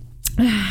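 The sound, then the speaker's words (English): A short, sharp breath pushed out through the mouth by a person after eating spicy food, fairly loud, with a faint voiced edge and a quick intake just before it. No talking. “Ooh, don't breathe out like that.”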